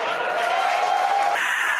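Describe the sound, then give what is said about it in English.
A crowd watching the Falcon Heavy side boosters land at landing zones 1 and 2 cheers excitedly in a steady, dense roar of many voices, holding at an even loudness throughout with a few sustained shouts or whistles rising above the din. “You can hear the crowd here, very excited.”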